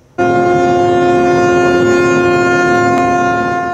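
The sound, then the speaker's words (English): The out-of-control cruise ship MSC Opera blares its horn in Venice before ramming a dock and a tourist boat, a loud, sustained, droning blast that begins abruptly and holds steady throughout, with no speech. “Cell phone video shows the MSC Opera unable to stop blaring its horn ahead of the crash.”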